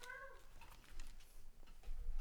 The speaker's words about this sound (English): She escaped. Just a public service announcement for all you listeners out there. There's a rogue cat just stumbling around the house who is making a heck of a lot of racket. So we do many apologies for the inconvenience.